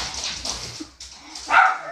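Dogs bark sharply a few times, with a higher whimpering yelp near the end of the short burst.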